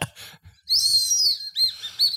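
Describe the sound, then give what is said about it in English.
A shrill, breathy whistle blown through half of a bitten whistle candy, loud: one long wavering tone, a brief pause, then a second burst of shorter warbling notes. “Yeah, see if they still whistle.”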